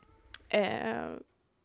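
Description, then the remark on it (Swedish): A cat lets out one loud, drawn-out meow lasting under a second, its pitch sliding downward, preceded by a faint click amid otherwise quiet surroundings. “Gud vad katten skriker.”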